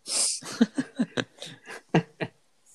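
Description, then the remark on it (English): A hissy breath blows into the microphone, followed by a quick run of short, breathy exhalations with a slightly laughing, voiced edge, then a faint final puff. “I think it's mainly just breathing.”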